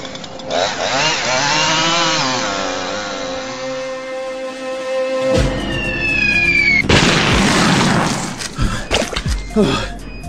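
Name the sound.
chainsaw running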